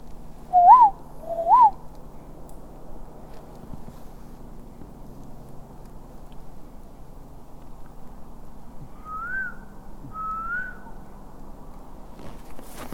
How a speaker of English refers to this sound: That whistle in there.